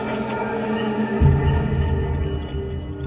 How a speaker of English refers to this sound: And what's that humming noise?